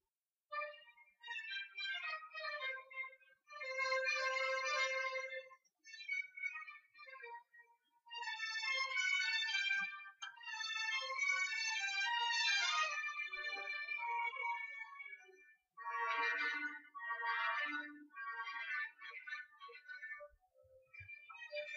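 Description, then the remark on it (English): Classical orchestral symphony music plays on its own for about twenty seconds, thin and trebly with little bass, moving through lively melodic phrases separated by a few brief pauses. “the song I picked today is Symphony No. 40 in G minor”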